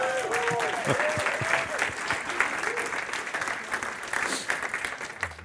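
A crowd applauds a pastor steadily, a dense wash of clapping that holds at a fairly even level throughout, with a few cheers and voices briefly rising over it early on.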